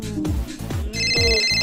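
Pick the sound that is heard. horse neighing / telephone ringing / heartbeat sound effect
telephone ringing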